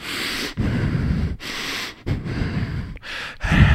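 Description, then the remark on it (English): A person imitates a man breathing hard only through his nose with his mouth shut: about six loud, rushing breaths in quick succession, each separated by a brief pause. “But he sits up and he's just breathing hard, just out of his nose. His mouth is shut.”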